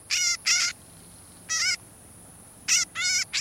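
A northern shrike gives harsh, nasal, buzzy calls, short notes repeated in pairs and singly with brief pauses between, clear against a quiet background with no talking.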